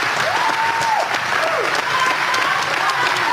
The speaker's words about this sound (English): I don't know why you guys are clapping. That wasn't real biblical repentance.